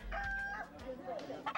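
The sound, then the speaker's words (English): At a cockfight in a makeshift dirt arena full of gamblers, a rooster crows once, loud, its drawn-out call rising and breaking off, followed by scattered clucking over a low rumble of crowd noise. “And you're going to test for its, like, the strongest bird?”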